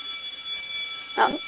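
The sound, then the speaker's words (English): A school bell rings as a steady, shrill electronic tone that holds for the whole moment, with a short louder burst of sound near the end and no one talking. “And that's our school bell. It means we've run out of time today.”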